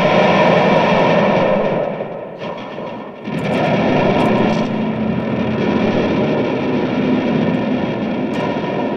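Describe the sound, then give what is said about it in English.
A thick, roaring wall of distorted guitar noise through an octave effects pedal, loud and sustained with a brief dip partway through before surging back, no voices. “I mean, a lot of the sounds like noise, but I actually do sit down with the pedals.”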